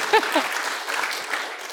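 A crowd claps steadily in a dense, sustained burst of applause, with a few brief vocal whoops rising near the start over the continuous patter of hands.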